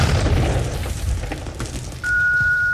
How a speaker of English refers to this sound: And then an explosion occurred.